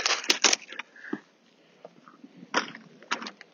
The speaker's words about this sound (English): can you hear that ice crunching underneath? It's amazing.